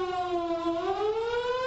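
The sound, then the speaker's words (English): A loud civil defense siren wails steadily, its rich droning tone holding a single long note that drifts gently upward in pitch, with no voices present. “What if a warning siren sounds?”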